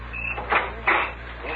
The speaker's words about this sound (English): I'm unarmed. Open the door.